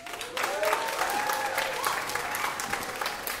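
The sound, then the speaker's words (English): An audience claps to vote for Zach Fox as the better barbershop PhD, clapping steadily for a few seconds, a dense patter of many hands with scattered voices and whoops rising over the applause. “If you think the better barbershop PhD was Zach Fox, clap your hands.”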